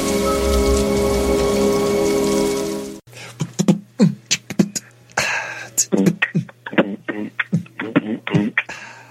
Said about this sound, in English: I wish the rain would stop just once. It can't rain all the time.